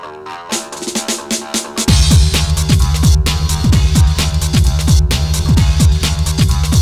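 An electronic big beat track with a brief sparse intro, then a heavy bassline and punchy drums crashing in after about two seconds, continuing loud and driving with no voices.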